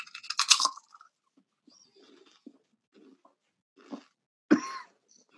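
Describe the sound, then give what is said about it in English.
Crunching lightly seasoned corn chips: a loud, crackly bite at the start, then soft chewing noises, followed by two more sharp crunches near the end, with no one talking. “But they do a thing called dink it and sink it, where you like essentially cheers and then eat it.”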